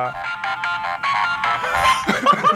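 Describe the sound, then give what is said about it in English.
A phone countdown timer alarm rings out at the end of a quiz countdown in a repeating electronic melody, bright tonal notes pulsing in quick steady bursts, continuing without pause through the whole stretch as it cannot be turned off. “Oh, shit, I can't turn it off. Wait. Your phone's just going to do that forever now.”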